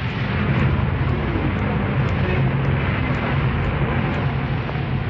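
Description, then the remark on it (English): A car drives home steadily, its engine and road noise forming a constant low rumble with a broad hiss on top, holding the same level throughout with no voices. “He drove home again.”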